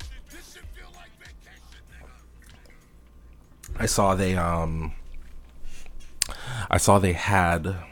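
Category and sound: household object, getting and drinking water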